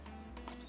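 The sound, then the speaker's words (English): A large toenail is shaken inside a little vial, rattling with a few faint, irregular clicks and ticks in quick succession against a quiet background. “No, I'm just shaking it in a vial because I don't know if I show you yet, but the toenail is huge.”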